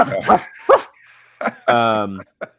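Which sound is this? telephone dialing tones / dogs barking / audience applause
dogs barking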